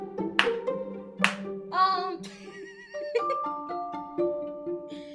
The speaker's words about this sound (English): Yes. I'm clapping like an idiot.